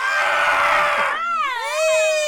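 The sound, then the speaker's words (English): A girl lets out a loud, piercing scream of terror at a bloody sight as a body explodes, high-pitched and sustained, with the pitch wavering and breaking upward before sliding down again. No talking. “The girl screamed in terror at the bloody sight.”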